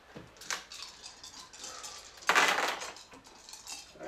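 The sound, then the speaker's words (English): Dice clatter and tumble across a hard table in a quick run of sharp clicks, with a louder rattling burst midway before they settle. Fairly quiet, with no talking. “And we're hoping that these dice roll better than the ones I just did. You actually are creating advantages, so go ahead and make rolls.”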